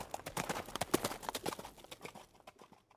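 Horse hooves clip-clop in a quick, steady rhythm of sharp knocks, growing fainter over the last second as if moving away.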